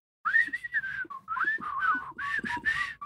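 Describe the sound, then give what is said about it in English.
Two people whistle together in synchronized, rough harmony, a fairly loud melodic line with brief breaks between phrases, lasting about three seconds with no talking. “Let's do synchronized, harmonized whistling.”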